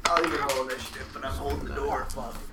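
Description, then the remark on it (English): Dice clatter and rattle across a hard tabletop in a quick burst of small clicks as players roll initiative in a tabletop role-playing game, with people talking over the sound. “Alright, everybody roll initiative.”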